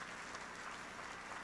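An audience claps together as a hand clap of praise to God, a dense, steady wash of applause, many hands blending into continuous crackling noise with no single claps standing out, fairly soft and sustained throughout.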